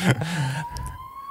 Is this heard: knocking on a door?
no